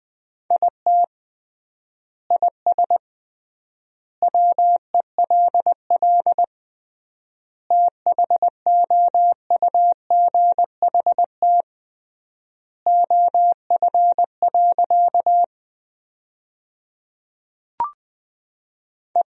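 Morse code at 20 words per minute with triple word spacing, sending practice sentences made from the 300 most common words: a single steady mid-pitched tone keyed into quick dots and dashes, in word groups separated by long silent gaps, with one faint click near the end.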